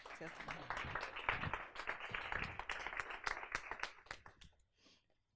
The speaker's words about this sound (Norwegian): Gi dem en applaus.